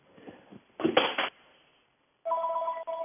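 A home telephone starts ringing near the end with a steady, loud electronic trill, preceded by a short clattering burst and a faint low murmur.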